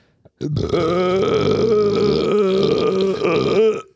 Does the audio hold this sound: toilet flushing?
no